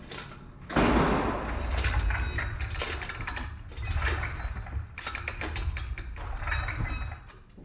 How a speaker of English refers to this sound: Give me a moment to seal the office door.